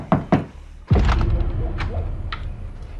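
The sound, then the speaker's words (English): Two quick, solid knocks on a wooden door at night, followed by a heavier thump that leaves a low, rumbling background tone behind it, with a few faint taps trailing off. “Okay, so then they go door to door.”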